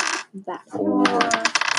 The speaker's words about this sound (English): So you'll roll 4. So roll the yellow dice 4 times and we take half of it.